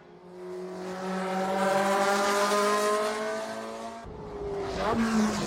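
A car engine holds a steady, droning note, then drops as the driver downshifts using heel-and-toe, with a quick throttle blip lifting the revs before it settles again. Fairly loud, no talking.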